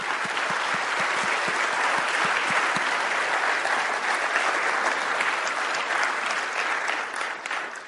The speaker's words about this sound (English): You know why I didn't have to cue them to applaud you? Because we recognize that you are men and women of courage.